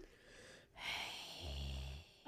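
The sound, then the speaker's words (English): A voice imitates Darth Vader's heavy mechanical respirator breathing for a mock audition tape: a hissing inhale, then a rasping, low-pitched exhale with a buzzy rumble, steady and breathy, with no words spoken. “That's the breathing. I'm not to the light yet. He does deep breathing.”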